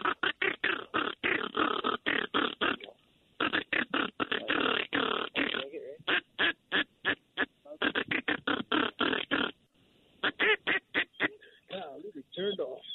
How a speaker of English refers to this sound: Oh, look at the birds. Oh, my gosh. There's a lot of divers.